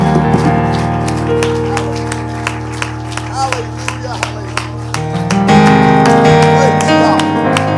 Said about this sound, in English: Would you just give the Lord a hand clap of praise again?